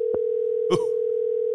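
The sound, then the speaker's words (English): A steady, unbroken phone dial tone hums at a low-mid pitch for the whole stretch as a phone call is placed, broken only by two brief clicks or rustles, with no voices. “No, Siri can't dial and talk.”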